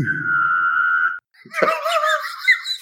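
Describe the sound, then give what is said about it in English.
A voice imitates a sci-fi tractor beam with a steady, sustained high hum over a low buzz for about a second. After a brief pause, a burst of laughter follows. “I want your tractor beam noise”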